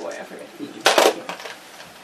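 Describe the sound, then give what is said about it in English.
A brief, sharp clatter of a handful of dice tumbling onto a hard surface, bright, with soft voices murmuring around it. “Grab me just a, you know, fistful of dice.”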